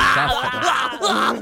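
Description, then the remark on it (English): A man vocally imitates Arnie's scream of pain from Total Recall, when he is on the surface of Mars: a loud, strained, wavering cry that briefly breaks off before a second, similar burst. No words are spoken. “You can do the Arnie scream or the Arnie. You know when Arnie's in pain.”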